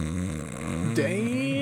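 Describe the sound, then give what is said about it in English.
A man imitates a snore with his voice, a low, rattling drone that rises into a sharp, startled vocal jolt at the end, fairly loud, mimicking himself snoring and waking up while hunched over in his seat in a hunting blind. “Bro, I woke myself up from fucking snoring.”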